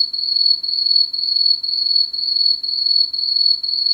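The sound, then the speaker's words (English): A steady cricket chirp pulses in a fast, regular rhythm, high-pitched and continuous, with nothing else around it—the classic crickets-in-silence effect. “We're both like, it's like crickets.”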